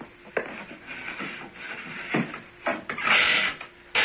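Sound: wooden door being opened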